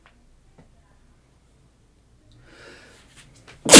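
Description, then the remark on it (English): A single sneeze, preceded by a breathy, hitching inhale, then a sudden loud burst at the very end, after a few seconds of near silence. “Jesus, sneezing, bro.”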